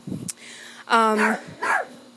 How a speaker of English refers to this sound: This is why this ritual is so stressful, because I have a chihuahua who likes to bark at everything, which means I miscount every step that I take.